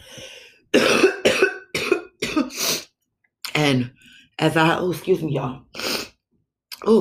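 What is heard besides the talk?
coughing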